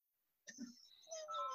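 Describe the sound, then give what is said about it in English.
A mobile phone ringtone starts abruptly after a brief silence, its bright electronic tones sounding fairly loud, shifting into lower sustained notes as it keeps ringing. “Turn that fucking phone off.”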